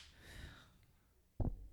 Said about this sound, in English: We got to clap this in just so before you sing. All right. 1, 2, 3.